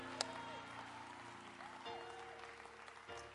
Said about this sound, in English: If you believe that, clap your hands to the Lord and give Him a shout of praise. Hallelujah.